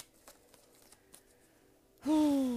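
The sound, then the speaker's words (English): Soft, faint riffling and light papery taps of a Rider-Waite Tarot card deck being shuffled, then a voice abruptly starts talking near the end. “So I'm shuffling the modern, no, not the modern, the Rider-Waite Tarot deck.”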